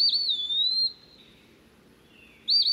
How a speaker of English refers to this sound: The eastern peewee has a catchy tune, too.